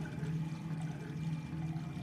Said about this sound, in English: The constant noise of water slowly draining from the soaking tub in our bathroom could be heard. It wasn't a few seconds of water, either. This sounded like a full tub was being drained.